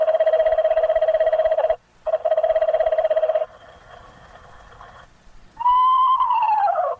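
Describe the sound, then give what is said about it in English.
Pre-recorded owl calls blare from a field loudspeaker: two long, steady, buzzy tones split by a short gap, a quieter stretch, then a loud call that slides downward in pitch. “Suddenly, the field loudspeaker lets off his first chorus of pre-recorded owl calls.”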